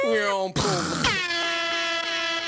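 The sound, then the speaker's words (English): A voice imitates a car crash sound effect like the one from the Omni Theater: a harsh, tonal screech, then a sudden noisy crunching burst, followed by a long, steady, blaring horn-like drone held to the end. “That's as good as we get for car crashing noises.”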